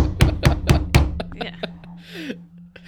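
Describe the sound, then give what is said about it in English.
Four loud, sharp open-hand slaps land in quick, even succession, followed by a few fainter taps and a low steady hum in the background. “I used an open hand.”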